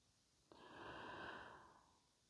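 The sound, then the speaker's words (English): A single snore, a breathy, rasping inhale that starts abruptly, swells and fades over about a second and a half, with no voices. “When you're convinced, you're going to go back and listen, and it's snoring.”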